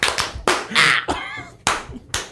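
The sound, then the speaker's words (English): Loud, sharp hand claps in a steady church rhythm, a switched clap pattern used when there is no music, about five evenly spaced strikes roughly half a second apart, with brief wordless vocal sounds between them. “Then we switch the clap.”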